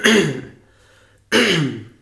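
Two harsh, throaty coughs, fairly loud, separated by about a second of quiet. No one speaks.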